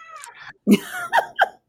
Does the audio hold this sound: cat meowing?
yes